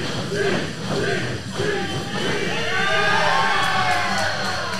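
A large crowd cheers and whoops continuously for a big competitor nicknamed the Cheese, a loud, dense roar of overlapping voices with rising shouts and yells that swell toward the end, with no pauses.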